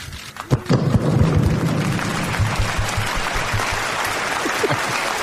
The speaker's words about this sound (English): Golf claps.